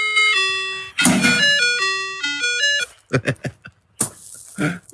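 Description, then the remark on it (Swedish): An ice cream truck jingle played from a phone: a bright, electronic chiming melody stepping up and down for about three seconds, then giving way to a few short, rough bursts of noise. “Vi hörde ju glassbilen.”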